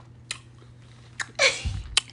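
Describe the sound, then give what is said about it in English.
Close, crunchy ASMR-style chewing right against the microphone: a few sharp, irregular bites and one longer wet crunch, loud and intimate with no talking. “She went all the way up to the mic to chew in y'all ear.”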